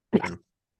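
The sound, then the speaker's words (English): One quick, sharp sneeze bursts out, a short voiced snap that cuts off abruptly into silence. “Bless you.”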